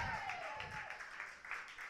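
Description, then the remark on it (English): An audience claps steadily for a poet after the poet's score is read out, a couple of seconds of dense, even patter of many hands. A thin falling whistle-like tone glides faintly through the start. “You can like that score, you don't have to like that score, but you have to clap for the poet regardless, so clap for the poet.”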